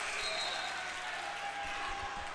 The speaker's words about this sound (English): A loud, raucous environment here at St. Clair High School. It's not a big gym, but boy, is it a tough one to play in.